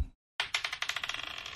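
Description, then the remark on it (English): After a brief silence, real dice clatter across a hard table, rolled for a ranged attack in a tabletop role-playing game, a burst of sharp clicks that quickens and fades as they bounce and settle. No one speaks. “Are you rolling real dice?”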